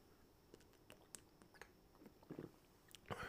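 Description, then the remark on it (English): A quiet sip of a cold drink of sweet cherry syrup and water from the fridge: small wet mouth clicks and brief slurping bursts, then a swallow, with no one talking. “I'm going to take a sip actually, because I just touched it and I'm feeling like I need some.”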